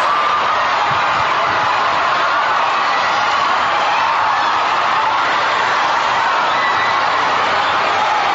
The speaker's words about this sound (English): They open up the doors and this happens. You should look this up on Google if you haven't seen it yet. It's absolutely ridiculous. They're all 10,000 people. 10,000 annoying cunts. trying to jam into one door. They're all twittering.